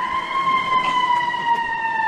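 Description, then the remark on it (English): An emergency vehicle siren holds a loud, steady electronic tone that drifts slightly downward in pitch, sounding alone, with no talking over it. “By the way, believe it or not, I mean, little known fact, I believe us playing sirens on the show is illegal.”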